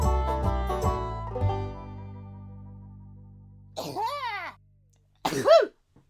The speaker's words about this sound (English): Oh, that was a good one. Second one was definitely the best sneeze I've seen for a while.